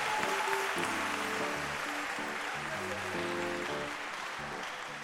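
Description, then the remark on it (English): An audience in church claps their hands in a steady, dense wash of applause, while sustained keyboard or organ chords play underneath throughout. “Can you clap your hands?”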